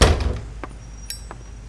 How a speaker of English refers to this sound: Come in, Marilyn. And close the door all the way.